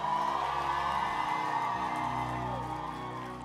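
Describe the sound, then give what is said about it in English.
A large crowd at Campus Rush roars with sustained shouting and cheering, dense and loud throughout, voices blending into a continuous wash of whoops and yells that eases slightly toward the end. “Can I hear a shout somewhere?”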